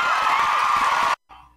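A loud burst of audience applause with cheering and whoops, a dense steady wash of clapping that cuts off abruptly after about a second, followed by a brief quieter trailing sound.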